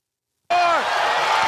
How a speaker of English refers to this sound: So here comes the chair. On a Tuesday night, following a Monday night. Let's track the audio here for the chair shot.